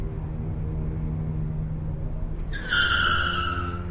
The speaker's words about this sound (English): After the car comes to a complete stop, the driver turns around and all of a sudden is in a black hood.